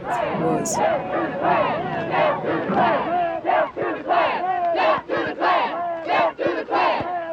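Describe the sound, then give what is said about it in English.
A large crowd of demonstrators and Ku Klux Klan members shout slogans and screams back and forth in loud, rhythmic bursts, the Klan yelling racial epithets, many voices chanting and yelling together with a steady roar of crowd noise underneath. “Yeah, there were slogans and screams going back and forth.”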